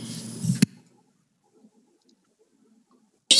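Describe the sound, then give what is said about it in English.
A single loud sneeze: a rising breathy build-up that snaps into a sharp burst, then near silence with faint rustles before a brief noisy burst at the very end. “Bless you.”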